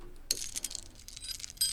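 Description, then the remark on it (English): A bunch of keys shaken to mimic rattling chains: bright, high metallic jingling in a quick flurry of clinks, with a sharp burst at the start and another toward the end. “That's chains rattling. Are you scared? It just sounds like my keys.”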